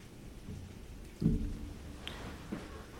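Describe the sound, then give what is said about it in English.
Heavy rain pours down in a steady low wash, broken by a deep rumble of thunder about a second in and a couple of fainter, sharper rumbles afterward. No one speaks. “It's really coming down out there. It's just pouring.”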